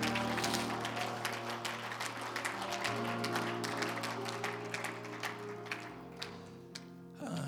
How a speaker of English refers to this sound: Hallelujah. Praise God. Oh, we praise you, Jesus. Oh, hallelujah. Come on, give him a hand clap and a shout of praise this morning.